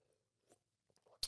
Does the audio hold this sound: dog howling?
no